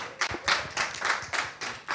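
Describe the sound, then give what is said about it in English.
A short round of applause: steady, rhythmic hand clapping in sharp bursts at a moderate pace, with no voices over it. “I think we should give them a round of applause for what has happened here.”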